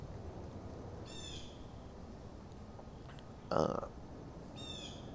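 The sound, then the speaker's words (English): Birds call out a few times at scattered intervals in the woods in mild, not hot weather, with one louder, harsher call in the middle, over a steady low outdoor rumble. No one speaks. “Doing podcasts in the woods, listening to the birds.”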